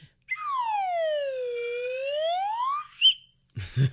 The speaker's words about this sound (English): I'm still holding my slide whistle, by the way. Oh my God. Do you want to give us one last, and I'll give a little exit?